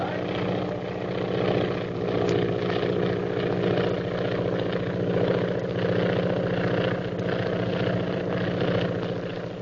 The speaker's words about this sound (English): There's a plane following us. Another plane? Has it got a purple triangle on it? Yes. By Jove, there's one on each wing.